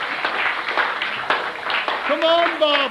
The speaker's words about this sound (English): Come on, both of you. Come on. Give them a clap, everybody. Come on.